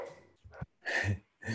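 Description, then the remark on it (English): A dog barks several times in short, loud bursts separated by brief pauses, with no talking over it. “My dog. We got an extra visitor to this episode.”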